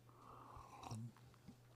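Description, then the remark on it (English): A quiet sip of hot coffee: a soft drawn-out slurp followed by a brief swallow, with a low steady hum underneath and no talking. “So let's have a sip of coffee and let's dive into Ephesians 6”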